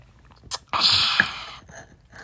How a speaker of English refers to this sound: one moment, I'm going to take a huge sip of coffee.